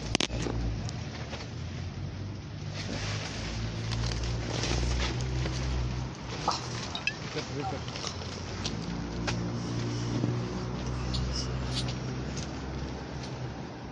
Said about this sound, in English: It's windy. I like the wind. I love it. How good.